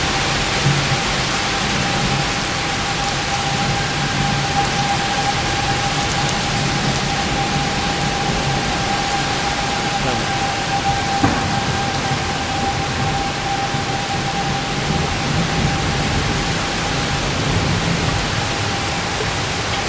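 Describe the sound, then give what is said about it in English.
Steady, dense hiss of rain falling outside in the wind, heard from a front porch, continuous and even for the whole stretch, with a faint steady tone running through it and no voices. “That's the rain hitting outside.”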